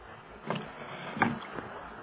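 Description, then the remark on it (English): Oars dip and pull through river water in a slow, steady rhythm as three people row a rowboat out to meet a flower boat, three soft splashing strokes over a faint low background, with no one speaking. “he joins forces and the three of them, well-armed, row out to meet the flower boat.”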